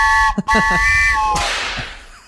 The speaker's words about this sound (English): I don't know why I played the whip sound effect.